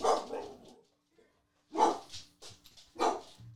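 Several sharp dog barks ring out in separated bursts, loud, with short pauses between them and no talking over the top.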